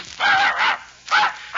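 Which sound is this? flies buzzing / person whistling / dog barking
dog barking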